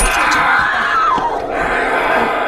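A loud, sustained scream from a film scene, its shrill pitch wavering then sliding downward, over a dense, noisy background with faint thuds, as in a horror montage of stabbing and screaming.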